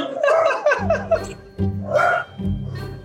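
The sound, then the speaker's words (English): Dogs bark excitedly, a quick run of sharp, loud yips followed by longer, overlapping bursts of barking with no pause in between. “And right now my dogs are going bananas.”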